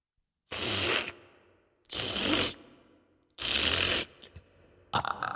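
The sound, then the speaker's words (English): A voice imitates a giant eating supper noisily: three loud, rough, hissing chomps about a second apart, then a flurry of shorter smacking bursts at the end, with no talking. “So she ran back to the giant's house, hid under his bed, and soon she heard the sound of the giant eating his supper like this.”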